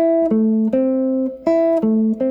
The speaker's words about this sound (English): okay, this basically A minor triad on the G minor. Okay, so you might think of that as an upper structure triad.